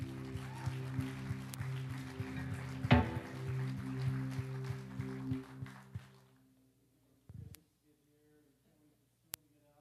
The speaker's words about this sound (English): Just lift up a clap to our King.